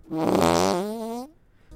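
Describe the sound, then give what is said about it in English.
A single loud, drawn-out fart sound effect, buzzy and tonal, lasting just over a second and sliding slightly upward in pitch before cutting off into quiet. “I didn't know there was a fart emoji.”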